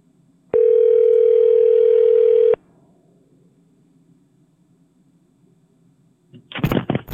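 Strange telephone line interference played as a prank on a call to a cell phone: a loud, steady electronic tone holds for about two seconds, fades into a low background hum, then a short burst of harsh crackling noise cuts in at the end.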